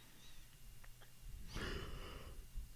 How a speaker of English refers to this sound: I started yawning, and then I could tell you were hiding one. I was like, now I have to yawn more.